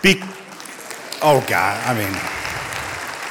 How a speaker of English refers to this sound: Look, not everybody clapped.